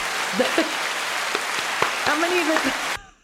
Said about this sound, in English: I'm going to even clap for myself because that was amazing.